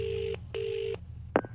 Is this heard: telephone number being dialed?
yes